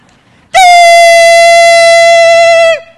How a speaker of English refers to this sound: If you want a really good smoke alarm or a really good, so I was just hoping that you might be able to share in the joy with me. I don't know if it's got any battery left, but I was hoping you might. Oh, come on, little guy. You made so much noise.